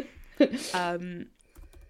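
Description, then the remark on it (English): Soft clicks of typing a search query into an academic database on a computer keyboard, a short run of keystrokes, with a brief drawn-out vocal sound over them. “I'm just typing Umineko into JSTOR to see if something happens.”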